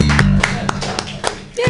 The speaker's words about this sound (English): Clap your hands together in a wild slappy-like motion